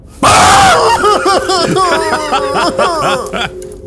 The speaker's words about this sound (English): I grip his face in my hands. I scream loudly as the healing magic restores him.